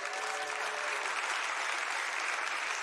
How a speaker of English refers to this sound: If you're in middle school, raise your hand. Will you clap for these missionaries?